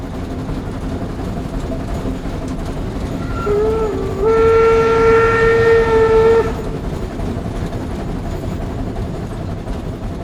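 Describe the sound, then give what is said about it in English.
An old steam engine train rumbles steadily along while its whistle sounds one long, shrill blast in the middle, rising slightly in pitch before cutting off, then the rolling rail noise continues. “It was a train, an old steam engine train.”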